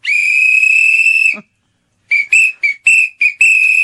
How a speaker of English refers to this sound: this is an interesting one, the Classic Sport Whistle Combo Pack. Because we don't want to go horse yelling. This? Yeah, we don't want to go horse yelling for help. And so what we're going to do is whistle continually.